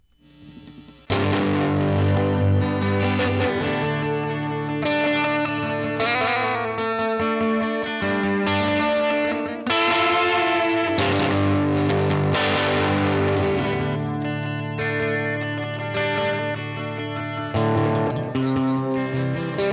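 An echoey, effects-laden guitar plays a slow, country-tinged three-chord progression, strummed chords ringing out loud with a shimmering, ethereal wash and no voices.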